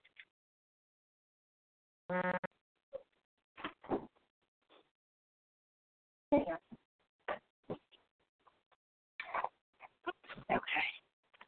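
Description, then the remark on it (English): A dog gives a brief whimpering whine indoors, followed by scattered short noises and soft knocks that come and go across a fairly quiet room. “Like, I have, look, I have all, everything else under control except for the dog.”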